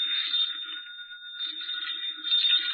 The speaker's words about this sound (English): I think that's your phone. I'll answer it. I wouldn't dream of it, my dear. I'll go.